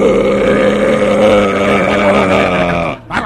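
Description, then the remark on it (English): A man imitates a growl with his voice, a long, low, rumbling sound for about three seconds, steady and loud with a buzzing, vibrating texture, then it cuts off abruptly. “At what point do you stop licking and start growling?”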